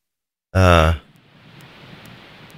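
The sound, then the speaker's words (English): A short, loud voiced burst gives way to a steady, moderately loud microphone static hiss with faint scattered clicks, lasting about two seconds with no talking over it. “I've got a little static in my mic, or maybe something wrong here on our end.”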